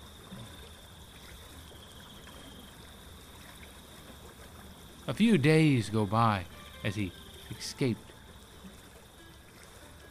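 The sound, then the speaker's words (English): Steady flowing river water at night, lit by the moon, runs continuously at a soft, even level, with a man's voice briefly speaking over it partway through. “The moon lights up that river.”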